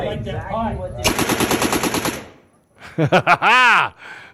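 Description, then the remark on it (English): A fully automatic version of a rifle, fired by a woman, fires one rapid burst of about a dozen sharp, evenly spaced cracks lasting just over a second, with a voice talking before it and loud excited voices afterward. “Okay, now that is what is called a fully automatic weapon.”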